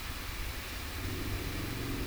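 car engine

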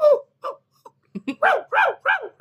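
dog barking and whimpering

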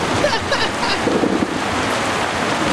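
thunderstorm sound effect

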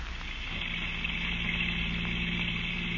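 car driving

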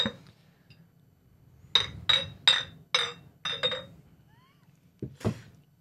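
drinks clinking together

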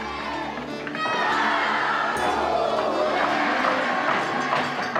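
crowd cheering

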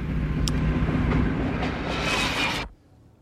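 train moving along rails

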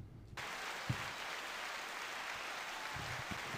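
applause sound effect

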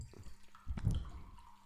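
drink being poured

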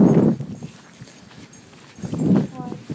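dogs barking

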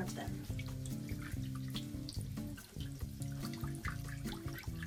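tap water running

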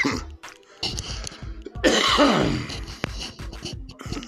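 cough

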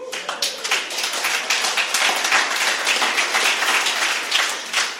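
audience applause

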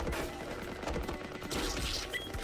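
gunfire

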